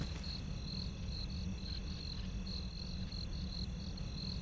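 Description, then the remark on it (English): Steady, rapid cricket chirping pulses high and continuously over a low, constant background rumble, late at night on entering an unlit city, with no voices. “We enter the city to the sound of crickets.”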